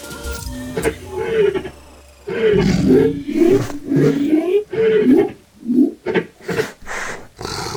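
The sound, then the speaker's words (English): Big cats roar loudly in a long, rumbling stretch, then let out a series of shorter, throaty roars and grunts in quick succession. “The cats are turning towards us.”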